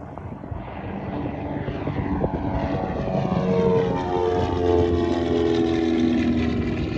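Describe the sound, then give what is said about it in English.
An Aztec propeller airplane engine drones loudly and steadily while climbing through 500 feet after departing Somerville, with a broad roaring wash and layered humming tones that shift slightly in pitch as the prop RPM is brought back a little for the climb. “We'll bring my prop RPM back just a little bit for the climb.”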